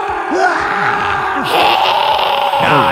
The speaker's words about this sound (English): Oh, that lady screamed.